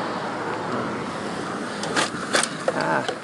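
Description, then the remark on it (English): A car turns right in front of a cyclist amid steady roaring wind and road noise, heard from a moving bicycle, with a few brief sharp rattles near the end. “Okay, I'm riding my bike and the car just turned right in front of me.”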